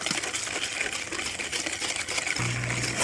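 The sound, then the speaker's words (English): Steady scraping and swishing of a whisk working through simmering liquid in a pan as more liquid is ladled in a little at a time, a busy wet rhythm that continues throughout with no talking. “If you think that you've added too much, just keep whisking.”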